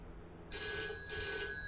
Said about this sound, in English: the phone is ringing. What? It's ringing. Well, pick it up! But it's quite late at night. Oh, it stopped ringing now.